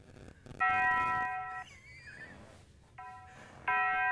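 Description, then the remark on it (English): A voice imitates the Taco Bell bong chime: a loud, bright, held tone, a wavering sliding note, then two shorter bursts of the same ringing pitch, with no words. “What, are you trying to do the bell?”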